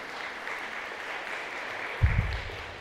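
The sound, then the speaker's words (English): A church audience applauds the Finance Committee and members for the stewardship, a dense, even wash of many hands clapping throughout, with a couple of low thumps near the end. “I think the Finance Committee and you who made the stewardship so well deserves a round of applause.”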